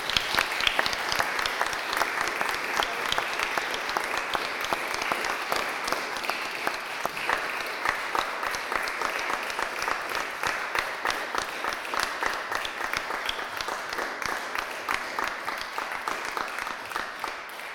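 Steady audience applause, many hands clapping in a dense, continuous patter that holds fairly even in loudness for about eighteen seconds, with no voices standing out.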